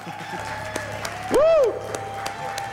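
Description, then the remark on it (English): An audience at a Young Adults Sunday service applauds Jesus after a prayer, with dense, steady clapping throughout, and a single loud rising-then-falling whoop cuts through briefly in the middle. “Let's give a round of applause to Jesus.”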